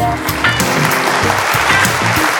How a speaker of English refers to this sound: Ooh, I should clap.